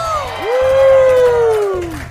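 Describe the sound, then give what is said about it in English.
A pub crowd at the Spotted Cow cheers loudly for about two seconds, with one voice letting out a long, sustained whoop above the general roar and a steady low thump underneath. “Let's give us a cheer.”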